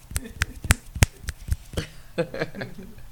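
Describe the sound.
Around six sharp finger snaps in an uneven rhythm over about two seconds, bright and crisp, given as a show of appreciation for a guest, followed by a low murmur of voices.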